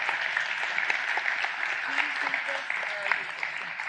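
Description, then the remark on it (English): A church audience claps steadily to welcome a guest preacher from Louisville, Kentucky, a dense, even wash of applause that keeps going for several seconds, with a few faint voices murmuring underneath. “Go ahead and give him another hand as he comes to share the word.”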